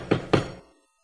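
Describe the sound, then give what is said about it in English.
Two firm, fairly loud knocks on a wall by an adult during a Passover meal, spaced a quarter second apart, with a short dull ring fading away afterward and no voices. “Right after that, there's an agreement with the other adults where one of the adults would knock on a wall.”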